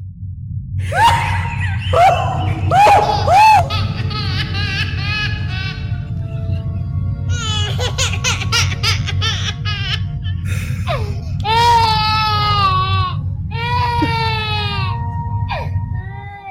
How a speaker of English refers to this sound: A young, very pregnant … is in the throes of childbirth.